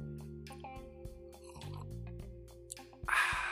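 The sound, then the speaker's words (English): Someone sips coffee: faint clicks and small shuffles over a steady low hum, then a single loud, breathy slurp right at the end. “Let's get a sip of coffee here.”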